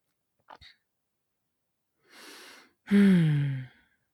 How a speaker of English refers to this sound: going to clear my throat.